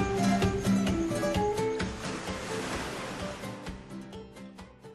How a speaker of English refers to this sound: Woo! Did you hear that? So did you hear that? That's our Frexy Net bubbly. You poured into a glass.